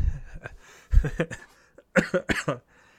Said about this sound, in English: Sorry, have a little coughs, because allergy seasons are here, and allergies fucking murder me.